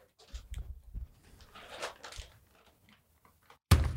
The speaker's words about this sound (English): Boom! If you're wondering, that was a 5-pound bag of bulk jerky. This was the sweet and spicy brisket kind.